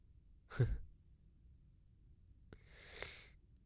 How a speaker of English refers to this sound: I'm sorry, Mom, I can't stop yawning. I'm really sorry.